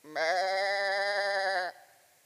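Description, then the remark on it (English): A single loud, sustained sheep bleat lasting about a second and a half, clear, with a slightly wavering tone before it cuts off. No one speaks. “I mean, can you imagine all the noises in the sheep?”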